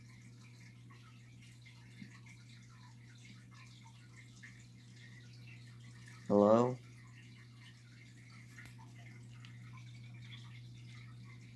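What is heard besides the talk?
rushing water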